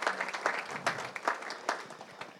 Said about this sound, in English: Why don't we give them a big round of applause? Thank you very much.